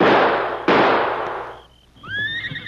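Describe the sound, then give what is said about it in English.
Two loud rifle shots crack in quick succession, fired at masked men sitting on horses about 50 feet away, the second ringing out in a long fading tail before a horse lets out a high, wavering whinny. “You can't miss. Not with these rifles.”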